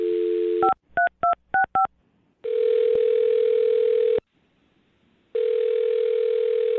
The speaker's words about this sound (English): All right, well, I'm going to dial her phone number right now and see why she's not getting back to you, okay? Okay, let's get to the bottom of this. All right, here we go.